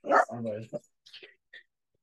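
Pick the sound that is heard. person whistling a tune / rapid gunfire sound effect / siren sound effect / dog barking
dog barking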